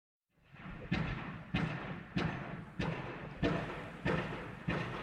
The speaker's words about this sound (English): We can hear the pile driving taking place. We're now down opposite the deep by the tidal barrier, or the river barrier. That's the pile driving for the new Arco building taking place, isn't it?